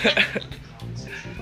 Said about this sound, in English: Uh-oh, we got an intruder. It's a black cat that's in heat.